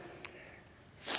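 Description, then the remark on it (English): A single short sneeze bursts out near the end after a moment of quiet room noise during a sermon, soft, with a faint brief sniff-like sound earlier on. “Bless you.”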